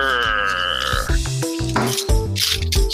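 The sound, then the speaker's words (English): Fish and chips paper rustles and crinkles in a string of sharp, uneven bursts, loud and papery, following a brief steady tonal hum at the start. “And if you want to know, this paper, fish and chips paper.”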